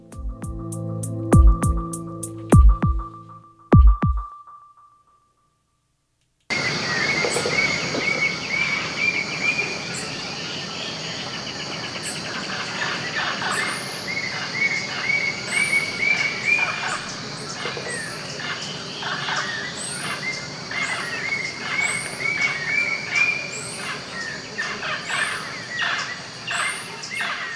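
A dense, steady insect drone fills the air in an Amazon rainforest in Ecuador, broken by repeated harsh squawks and shrill chirping calls from macaws and other creatures, following a brief opening burst of sound and a short silence.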